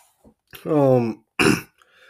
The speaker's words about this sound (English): Man, that was, like I said, sorry about all that coughing and hacking. I'm trying here.